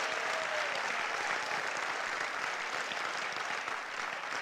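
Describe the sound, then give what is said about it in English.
A crowd claps steadily and continuously in applause for Jesus Christ, a dense wash of applause that holds its level for several seconds with no voices breaking through. “Can we give the loudest applause to the one and only Jesus the Christ?”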